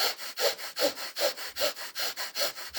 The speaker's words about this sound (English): So if you need more energy, you can do rapid breathing. Like, a really potent old ancient one is the breath of fire.